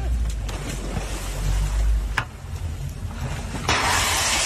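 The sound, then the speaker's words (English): A burning boat on the water: steady low rumble and roaring wind-like noise, a sharp crack midway, then a loud rushing hiss surging up near the end. No one speaks. “Apparently, we have someone's boat, all right, someone's sugar daddy with a boat going up in flames.”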